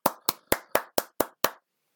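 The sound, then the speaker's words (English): Seven crisp, evenly spaced hand claps in a quick steady rhythm, loud and sharp, from what sounds like a single person, then silence. No voices. “Round of applause.”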